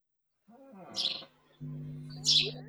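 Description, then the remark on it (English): Birds chirp outdoors on the balcony of a house in India at 8 in the morning, in two short, bright bursts about a second apart, with a low steady hum droning underneath the second call. “I'm sitting in my parents' house in India on the balcony. Oh, it's 8 in the morning and there are birds.”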